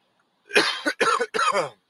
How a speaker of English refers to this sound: Ooh, the cough is trying to hang on.